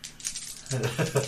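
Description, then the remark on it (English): A quick rattle of relationship dice being rolled in a game, tumbling and clicking against a hard surface, fairly loud, followed by someone starting to speak over the tail end. “Add those relationship dice.”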